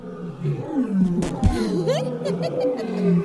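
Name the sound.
whale sounds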